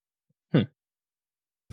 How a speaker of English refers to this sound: And I was like sitting here and I was trying to breathe hard just to get it to happen and it didn't. But I finally got it to happen just then. But like, I was just breathing like this.